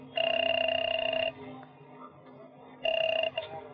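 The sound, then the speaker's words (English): A telephone ringing tone heard from the caller's end of a call placed from a phone at an airport: a steady, buzzy double-pitched ring lasting about a second, a pause with faint room noise, then a second ring cut short. “I got to a phone and called Rose.”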